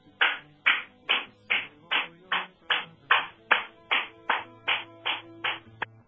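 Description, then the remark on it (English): A steady, rhythmic series of about fourteen sharp hand claps, evenly spaced and fairly loud, with a faint low tonal hum underneath and no talking. “according to Tinkerbell and Peter Pan, clap if you want peace”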